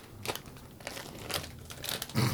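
A candy wrapper crinkles in short, irregular bursts of crisp plastic crackle, about five rustles over a couple of seconds, with the loudest crunch at the end and no one talking.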